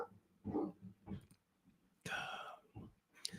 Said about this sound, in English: Let's continue on with Deontay Wilder while my dog takes care of business.